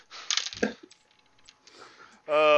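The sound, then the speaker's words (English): Dice clatter across a hard table in a quick burst of rattling, then a few scattered clicks as they settle, before a voice briefly cuts in at the end. “Last roll. Come on, 18.”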